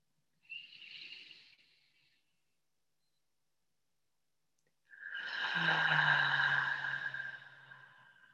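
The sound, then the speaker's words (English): A short, soft deep breath in during a grounding breathing practice, then a few seconds of silence, followed by a long, louder breath out that carries a low, voiced sighing tone. No one speaks. “We'll take 3 deep breaths together to anchor and ground our practice.”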